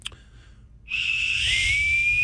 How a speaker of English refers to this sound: So there's your bosun's whistle. That's beautiful. It's gold. Give us a little whistle. Let's see how this thing works.